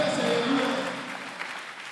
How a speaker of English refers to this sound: If you are the one, clap your hands and shout, I am the one. I said, clap your hands and say, I am the one.